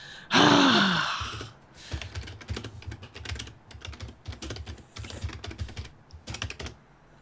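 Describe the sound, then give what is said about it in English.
A loud breathy sigh opens, then a computer keyboard clatters in quick, uneven bursts of sharp clicks as someone opens an incognito window in Google Chrome with Control Shift N, key presses pausing briefly between runs and continuing to the end. “Okay, I'll go on to Google Chrome. Incognito. Go on. Control Shift N.”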